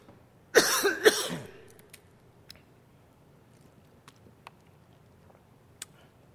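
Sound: coughing and throat clearing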